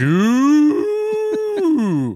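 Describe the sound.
A person imitates a cow, letting out one long, loud moo that rises in pitch and then holds steady for about two seconds, broken by several brief stuttering catches.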